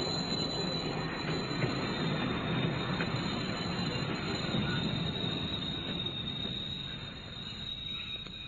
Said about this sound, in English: Quickly, a train's coming.